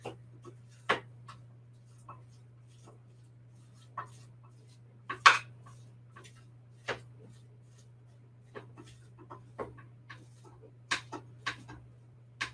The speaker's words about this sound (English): All right, so I'm just breaking apart some of this Beyond Meat in my frying pan.